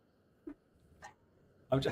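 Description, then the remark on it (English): A dog, Rudy, gives two brief, faint whimpering yips as people come home, then a louder burst of barking-like noise near the end, mixed with people talking. “He's going to bark a little bit and make some noise.”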